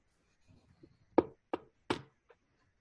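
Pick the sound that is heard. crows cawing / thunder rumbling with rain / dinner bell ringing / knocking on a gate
knocking on a gate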